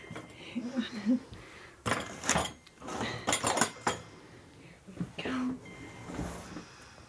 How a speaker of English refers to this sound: Okay, well, I'll just move your dinner tray off this chair.